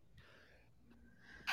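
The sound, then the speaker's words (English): A single sneeze: a drawn-in, breathy inhale followed by a sudden, sharp burst at the very end. No one is talking. “God, I'm sneezing.”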